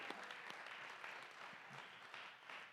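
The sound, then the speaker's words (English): A round of applause from a church audience for the worship team, many hands clapping in a dense, steady patter that stays fairly even and soft throughout, with no voices standing out. “Let's give a round of applause to them.”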